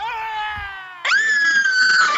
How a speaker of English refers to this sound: Closing in, she realizes it is a man that is completely ablaze, shrieking in agonizing pain. Her ecstasy shifts to horror as the man inches closer. She screams.